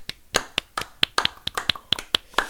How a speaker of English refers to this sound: And as we always do, it is time for us to clap it up.